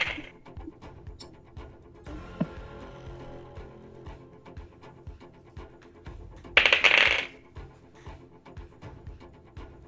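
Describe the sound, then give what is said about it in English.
Many dice, rolled by the Dungeon Master during a tabletop role-playing game, clatter across a hard tabletop in a short, loud rattling burst, surrounded by quieter scattered clicks and faint handling noise amid otherwise hushed surroundings. “Oh no, I can hear the dice rolling.”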